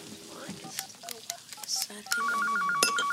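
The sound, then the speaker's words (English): A phone call being dialed: a quick run of short, high-pitched telephone keypad beeps, about ten tones in uneven rhythm, followed by a steady, warbling ringing tone on the line. “Carrie, however, wants to go out, so she calls Samantha.”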